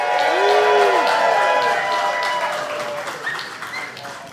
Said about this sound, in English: So he's here with us. Y'all give Ralph a big round of applause.